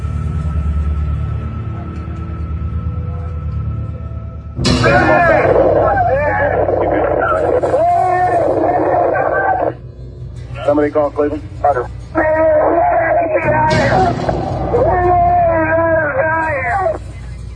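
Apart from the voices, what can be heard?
screaming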